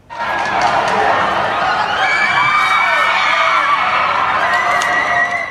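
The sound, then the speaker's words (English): A crowd of onlookers in southeastern France shouts and screams urgently at two boys, aged 3 and 10, hanging from a window of their burning flat, yelling for them to jump; overlapping voices continuously at a steady high intensity with some cheering-like whoops, loud throughout. “Well, as you just saw there, the two brothers, aged 3 and 10, were hanging from a window as flames engulfed their home and onlookers below screamed for them to jump.”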